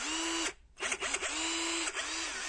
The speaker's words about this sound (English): I'm holding in my hand a 12-volt power drill from the good people at the Global Machine Company. And it's a fantastic drill.